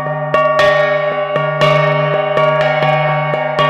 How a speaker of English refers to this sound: That's right, the gangsa. You apply a stick on the gong. Okay. And then, of course, and then there's the sound. Right. But the gong itself is the resonator.